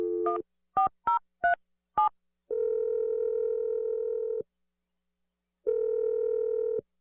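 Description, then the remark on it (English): Several quick beeping keypad tones as a number is dialed, followed by two long, steady telephone ringback tones separated by a pause of silence. No one speaks. “Let's just give Sean a call, and we'll let you make your awkward Tuesday phone call.”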